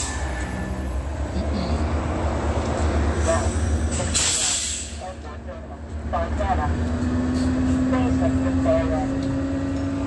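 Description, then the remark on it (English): An Omnitrans city bus pulls in at 9:08 a.m., its heavy engine rumbling steadily with a rising whine and a sharp burst of air-brake hiss partway through, set against constant street noise. “And Omnitrans is arriving at 9:08 a.m.”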